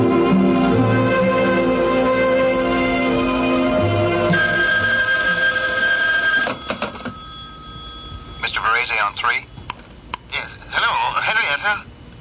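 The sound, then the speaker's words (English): A telephone rings in short warbling bursts as a call is put through from an office desk, fairly loud, layered over a dense, sustained tonal background that fills the first half before the rings take over. “Get me my husband on the phone, will you?”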